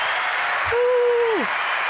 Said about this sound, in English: where is the round of applause?